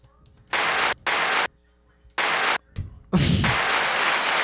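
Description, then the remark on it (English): Loud bursts of canned applause from a soundboard start and stop abruptly, triggered by a button: four short blasts, then a longer stretch of clapping at the end. “Is that an applause? It's an applause.”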